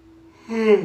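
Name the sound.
yawning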